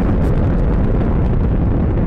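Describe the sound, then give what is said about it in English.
A rocket engine in flight after liftoff: a loud, continuous roaring rumble, dense and heavy in the low end with crackling bursts throughout, sustained for the whole stretch with no voices. “This rocket engine just sounds noisy.”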